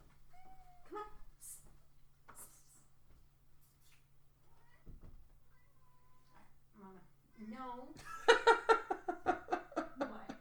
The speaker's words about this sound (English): No. Just cats.